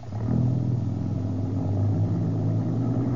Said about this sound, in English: The trucks are pulling on out without him.